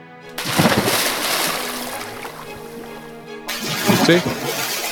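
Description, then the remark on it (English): Two bursts of splashing water as a thrown rock plunges into the Danube River, a sharp plunge near the start and another a few seconds later, each followed by a fading slosh, with a steady hum and faint voice-like tones underneath. “See here how the rock hits the river? It splashes wonderfully.”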